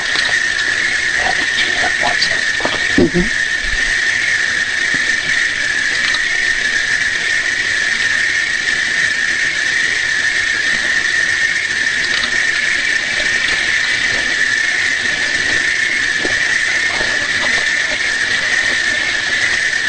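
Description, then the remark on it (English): A dense chorus of crickets chirping nonstop in the middle of the night at the Mackey Mansion, a steady high-pitched trill that holds an even loudness throughout, with a few faint low thumps early on and no voices. “There are a lot of crickets in the beginning.”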